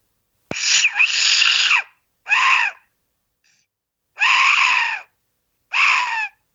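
An Aztec death whistle is blown in four loud, harsh, scream-like blasts, the first long and the rest shorter, each a raspy, wavering shriek with silent gaps between. No one talks.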